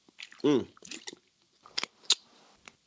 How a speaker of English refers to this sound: So before I bring him in, I just got to get a little sip of water right quick, because this is going to be a doozy.